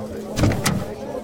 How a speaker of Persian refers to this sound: شاپور غلامرضا پهلوی، برادر شاه، از مستقبلین جدا میشه، به سمت ماشین میره و در عقب سمت چپ اتومبیل رو باز میکنه.